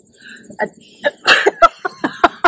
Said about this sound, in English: I have to sneeze. Hang on.